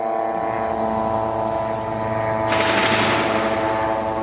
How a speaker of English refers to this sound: And you can hear here now the drone, the sound of the drone. That's the constant.